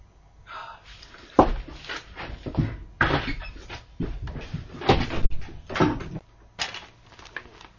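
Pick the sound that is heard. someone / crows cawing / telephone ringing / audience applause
someone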